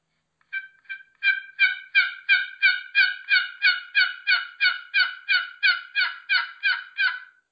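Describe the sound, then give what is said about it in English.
A turkey box call is played to imitate a hen's lost yelps: a long, steady run of about seventeen raspy, even yelps, played softly and building slightly in volume, clear with no talking. “Kind of soft with the box call, see if anything answers, and then a lot of times I'll do one more series and kind of pick it up a little bit.”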